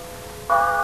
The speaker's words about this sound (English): But then I hear the brass tongue of the bell on the old German schoolhouse. And it says 100 things to me. It says words like, remember, remember.